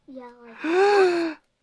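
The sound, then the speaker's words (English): A single theatrical gasp performed by a voice: a brief voiced lead-in, then a loud, breathy intake with a rising-and-falling vocal tone, alone, lasting about a second. “Everyone gasped. You know what a gasp is?”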